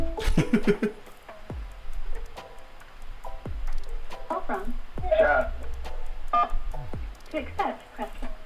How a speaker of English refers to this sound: Oh shit, we got a phone call, cuz. Real quick.